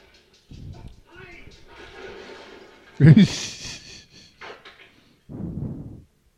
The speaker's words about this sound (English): Door banging.